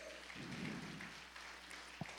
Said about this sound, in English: Go ahead, give the Lord a hand clap.